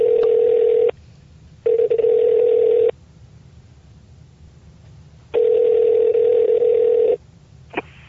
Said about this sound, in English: will you dial him up, get him on the horn for us? I sure will.